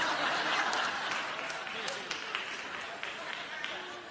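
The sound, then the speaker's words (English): A crowd applauds steadily for several seconds, a dense wash of clapping with a few sharper individual claps standing out, loud throughout. “Why are you applauding evil behavior?”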